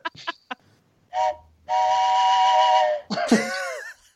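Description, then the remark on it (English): A person vocally imitates a train whistle: a few short clicks and puffs, then two sustained, harmonic hoots, ending in a wavering, gliding wail with vibrato, loud. “You put some vibrato in that, in that train whistle.”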